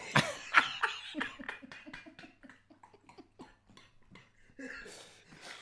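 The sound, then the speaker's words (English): A coughing fit: a few loud, harsh coughs up front, then a long run of quicker, rhythmic hacking bursts that gradually soften, ending with a raspy breath. “You're coughing differently today.”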